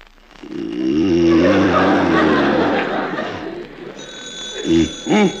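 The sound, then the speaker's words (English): A telephone rings insistently, a bright sustained jangle that carries through, mixed with groggy vocal sounds and a couple of short laughs or grunts near the end. “Put down the alarm clock. It's the phone.”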